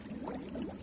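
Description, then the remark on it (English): A short burst of bubbling water, a soft continuous burble with wobbling, gurgling tones, fairly quiet and heard on its own without any talking. “Super producer Max, can I get some bubbles going?”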